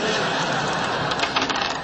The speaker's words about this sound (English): Conducting an experiment. With Dungeons and Dragons dice? Yes. You know, from here on in, I've decided to make all trivial decisions with a throw of the dice.